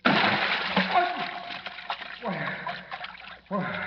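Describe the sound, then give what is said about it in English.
A loud splash as Batman, plummeting down through black space, lands in a deep vat of ice-cold water, followed by sloshing and churning, with voices sounding over the watery commotion. “As Kent searches desperately, his X-ray vision unable to penetrate the lead backing of the mirrored floor, Batman, plummeting down through inky black space, lands in a deep vat of ice-cold water.”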